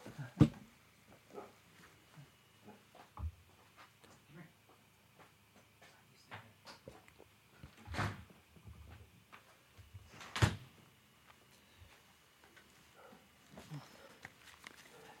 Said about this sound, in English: Let me shut this door.